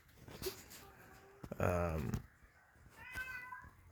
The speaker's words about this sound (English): ignore the cat, please.